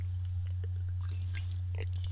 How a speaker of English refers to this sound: Excuse me. Take a old sip-a-rooney here.